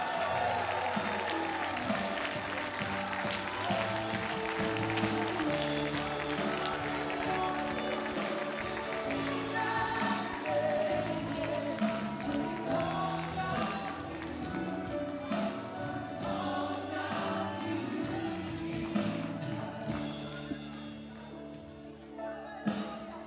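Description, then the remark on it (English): A crowd claps steadily along with loud, full music, the rhythmic clapping and stamping blending into a continuous dense wash that holds strong for the whole stretch before easing slightly at the end. “Can somebody just clap their hands with me?”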